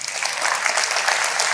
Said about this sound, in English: That's it, baby. All right, let's clap for that.